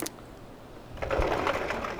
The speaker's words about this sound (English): Oh, that sliding door. Same sound every time because we only had one sliding door sound. Oh. And I couldn't really get that isolated.